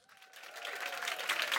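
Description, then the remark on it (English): Audience applause at a filmmaker event in the Apple Store on Regent Street, London, welcoming the guest moderator. It swells from quiet to a full, dense patter of many hands clapping, steady and fairly loud, with no voices on top. “What a crowd.”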